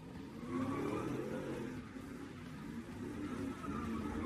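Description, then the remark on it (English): A car engine roars and revs continuously, its loud rumble steady throughout, with a thin whine of spinning tires riding above it as the car does donuts in an intersection in New Orleans. “This video shows a car doing donuts in New Orleans.”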